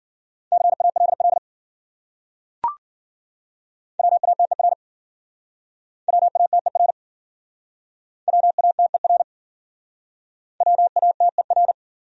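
Fast Morse code beeps at 40 words per minute, sending words from the top 200 words: a steady mid-pitched tone in five quick clusters with short silences between them and a single sharp click early on.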